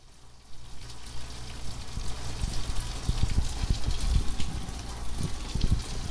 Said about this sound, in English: You're listening to a rainy day episode. Listen to this.